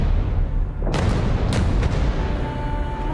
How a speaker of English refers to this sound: You will hear thunder and remember me.